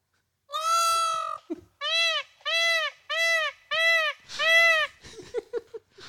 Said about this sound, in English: So when you think you have a problem with, you know, some extra birds or something you don't want, think of the poor people of Florida that literally have peacocks everywhere and are breeding. And they have to listen to what?